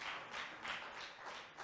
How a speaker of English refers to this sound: Let's clap for our sister. Hallelujah. Clap now. She reminded us. Let's clap for her.